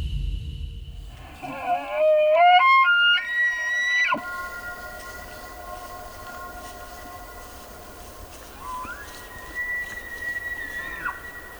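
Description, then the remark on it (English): Wild elk bugling in the Mountain West of the U.S.: a loud, high squealing whistle that climbs in steps and holds, then a fainter second rising bugle several seconds later, with no talking. “Back here in the U.S., the bugling of wild elk is part of what makes the Mountain West so special.”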